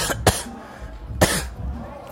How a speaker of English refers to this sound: Been up all night with this bad hacking cough.